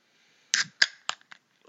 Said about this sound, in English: Can you tap the can, please?